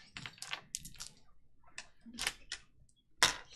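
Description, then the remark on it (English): Four hard plastic dice are rolled during a tabletop game, clattering and tumbling across a tabletop in quick, irregular bursts of clicks, ending with a sharper final knock, fairly quiet with no talking. “Roll. There's 4 of them.”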